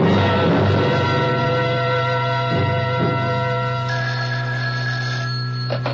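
A telephone rings on an outgoing call, a steady buzzy electronic tone that holds almost continuously for several seconds with a couple of brief dips, fairly loud and with no one speaking.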